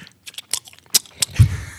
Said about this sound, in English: if people hear me chewing, it's because I'm eating lunch during this interview. So sorry.